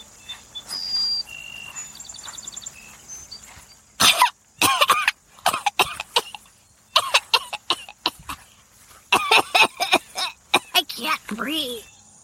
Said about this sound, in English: Stop coughing and keep up